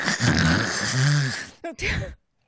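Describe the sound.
A voice mimics a loud, rasping snore of a tiny sleeping person: a long, throaty rumble followed by a brief snorting catch and a second shorter rattle, prominent with no other sounds.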